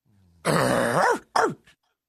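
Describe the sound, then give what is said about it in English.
A person imitates a dog barking with two rough, throaty vocal barks, a long strained growl-like one followed by a short clipped one, loud with no other talking. “Whatever dog you just did, that dog is not doing well.”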